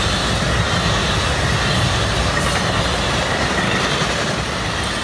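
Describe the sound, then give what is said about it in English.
An M3 electric passenger train rolls past on the rails, running backwards, a steady loud rumble with rapid wheel clatter and a faint high squeal, sustained throughout with no voices. “Waiting for the passenger train.”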